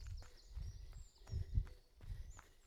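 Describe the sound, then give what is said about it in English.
Steady footsteps of a person jogging at an easy, chatty trotting pace, thudding in a regular rhythm, about two strides per second, soft, with faint outdoor ambience and some high chirps in the background. “You hear my footsteps, nice little footsteps as I'm trotting along.”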